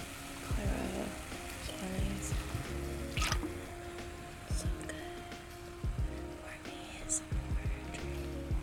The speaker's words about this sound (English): Pouring over the microphone, always a good idea. Okay, this feels... Oh, sorry. I almost overflowed.